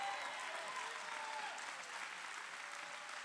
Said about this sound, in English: Come on, keep on clapping, Victory Outreach.